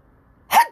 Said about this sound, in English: Achoo! Love the ones you're with. God bless me.